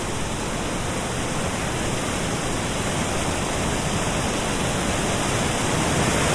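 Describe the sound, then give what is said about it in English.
Close, steady roar of river water rushing over stones covered in long green moss, a dense continuous hiss that never lets up across the whole stretch, with no voices. “So each of these stones that the water is rushing over are covered in this very long green moss, like the long green hair of some kind of children's book monster.”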